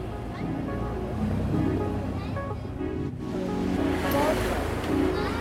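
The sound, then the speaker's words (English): A boat heads further out to sea, pushing steadily through ocean waves while people aboard scan for whales, with a constant rush of water and wind and a low engine drone. Indistinct voices come through faintly beneath the noise. “We head further out to sea.”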